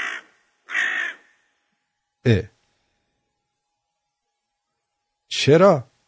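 Four harsh, raspy crow caws ring out separately across a few seconds, loud and close, with long silent gaps between them and no talking underneath.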